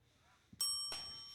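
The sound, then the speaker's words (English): A bell rings out twice in quick succession, bright and metallic, marking a pitch thrown in a baseball game, with the second strike following closely and its clear tone lingering and slowly fading. No one speaks. “That bell right there, Adam, represents a pitch that was thrown.”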